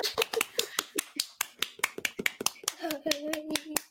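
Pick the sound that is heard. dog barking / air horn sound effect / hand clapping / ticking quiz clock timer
hand clapping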